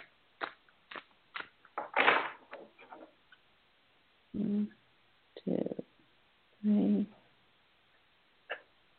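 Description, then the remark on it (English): A deck of cards being shuffled: a run of quick, crisp clicks and a short papery riffle, followed by a few brief low murmurs from a voice. “One more shuffle.”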